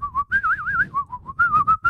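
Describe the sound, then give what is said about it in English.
A person whistles a wavering, warbling tune for about two seconds, pitch sliding up and down in a steady melodic line, clear with no talking. “I think I could whistle better than that fucker.”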